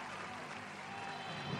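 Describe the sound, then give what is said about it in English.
An audience applauds after Bill Gates proclaims that half of Microsoft's revenue during 1984 will come from Macintosh software, a dense, steady wash of clapping holding an even loudness throughout without distinct individual claps or pauses. “The audience loves it and gives them a big round of applause.”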